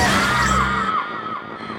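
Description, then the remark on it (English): Samus' death scream from the video game Metroid Prime, recorded by a separate actress: one loud, strained cry that slides downward in pitch over a harsh, noisy wash, then thins out and fades within two seconds. “It's here where I think I died the most in Metroid Prime, and where I noticed how distressing Samus' death scream sounds.”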